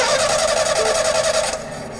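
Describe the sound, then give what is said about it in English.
A car engine cranks with a fast, steady rhythmic whirring for about a second and a half, then winds down without catching. It's loud, with no voices. “For those of you who would prefer to hear a car starting...”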